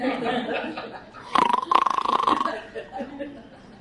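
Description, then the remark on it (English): A man's voice briefly imitates a husband snoring: a rasping, fluttering snort that lasts about a second, fairly loud, surrounded by quieter vocal sounds. “And then you look at your husband snoring.”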